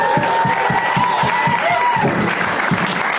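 Ian Edwards claps loudly and steadily in a quick, even rhythm throughout, with a faint high-pitched vocal whoop over the first part.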